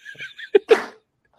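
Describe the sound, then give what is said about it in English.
A single loud sneeze: a few quick, hitching inhales build up, then a sharp catch and an explosive, breathy burst, followed by silence. “I got to sneeze. I have to sneeze.”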